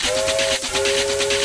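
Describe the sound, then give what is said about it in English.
A steam train whistle blows in a steady, shrill tone over a loud rhythmic chuffing hiss, continuous throughout. “This is the train.”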